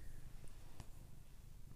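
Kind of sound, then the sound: animal, cat purring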